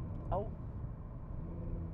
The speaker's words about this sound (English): Oh. Okay. Sorry. Traffic.